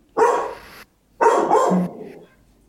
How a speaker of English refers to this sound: Oh no, she's going to bark. Here we go. She's barking at a bigger dog across in the park. Uh-huh. So they're communicating in their language.